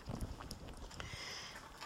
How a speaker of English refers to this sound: I'm adding a little water. That's what you heard me do, is just add water to the saucepan, and I'm turning that up to high